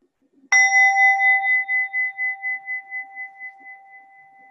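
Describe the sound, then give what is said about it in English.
A single bell is struck once at the start of a Buddhist talk and rings out clearly on its own, its bright tone lingering for several seconds with a gentle pulsing shimmer as it slowly fades. “and present for the bell.”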